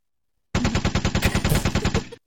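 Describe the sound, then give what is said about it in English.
A rapid, even burst of about a dozen-plus sharp knocks on wood, loud, rattling off in under two seconds before stopping abruptly, with no voices. “And so every time this happens, I do want to say, and I'm going to knock on wood.”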